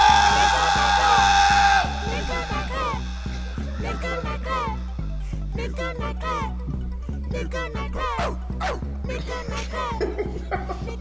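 A dog barks over and over in a rapid, nonstop string of loud yaps, following a brief steady tone at the very start.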